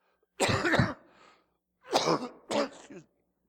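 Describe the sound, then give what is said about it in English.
Three harsh coughs from one person: a longer, fuller cough first, then after a short pause two quicker ones in succession. They are loud and stand alone with no talking around them. “Excuse me.”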